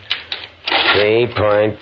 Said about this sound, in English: Swiftly, efficiently, he presses tabulating keys on the control board, oblivious of all else.